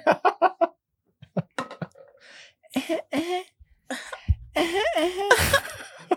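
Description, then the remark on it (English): A burst of quick coughs in a rapid rhythm, then scattered hacks and throaty, wheezy vocal noises, ending in a loud harsh cough-like blast. “that was the most bitch cough ever.”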